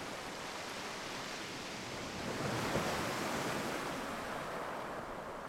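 Waves breaking on a beach: a steady, full rush of surf that swells louder around the middle and then eases back into a continuous wash, with no voices.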